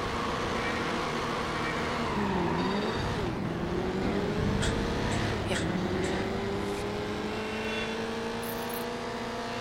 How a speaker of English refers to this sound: I'm going to listen to the grind of the engine.